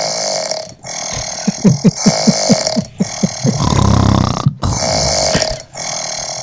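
Loud, raspy snoring in several long rattling bursts, each separated by a short pause, with a deep guttural flutter running through them and no talking.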